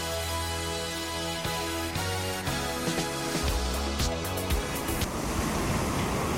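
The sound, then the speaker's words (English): Gentle sea waves wash against cliffs in a steady, soft surf, starting under a tonal musical bed that fades away and leaves the water sound alone toward the end. “Imagine relaxing in the Jamaican sunshine as the sea gently kisses the cliffs.”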